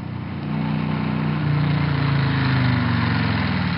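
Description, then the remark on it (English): A motorbike engine rumbles steadily at idle, its low throbbing hum growing slightly louder as it pulls up, with no voices over it. “Ooh, hang on, here's my ride.”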